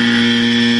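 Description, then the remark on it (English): A loud, harsh game show buzzer blares in one steady, unbroken tone, filling the whole moment with no voices over it. “And final clue, hands on buzzers, you're gonna get it.”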